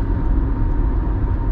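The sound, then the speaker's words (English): Steady, loud roar of traffic on a freeway as a car speeds right past, a dense low rumble of engine and tire noise that stays constant throughout, with no one speaking. “I'm on the freeway and some guy just buzzed right past me.”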